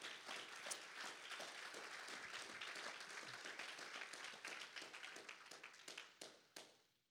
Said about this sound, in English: Come on, we need more hand claps than that.